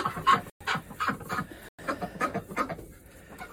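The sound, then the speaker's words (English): Poultry cluck in a steady run of short calls over a rough, breathy wind noise at 15 degrees below zero, with a couple of abrupt dropouts breaking the sound. “15 Degrees Below Zero the Poultry Need Water”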